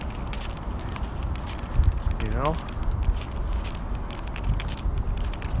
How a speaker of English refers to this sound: Really a much slower process to scroll things through things with a click wheel. I mean, it's a nice way to do it, but as opposed to a touch screen, it's just much less efficient.